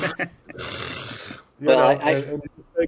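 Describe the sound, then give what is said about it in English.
A person in a tent does an exaggerated imitation of a loud snore to wake a tent mate: a long, rasping inhale, then a voiced, rumbling snort, with a few quick breathy sounds around it. “And then that way, that big, loud, fake snore actually reinforces the wake up of your tent mate.”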